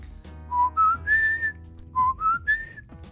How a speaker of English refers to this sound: And as you whistle it, you feel this just like this power just emanate, and it like whirls around the room, and it's like a windless wind, right? Like courses around the room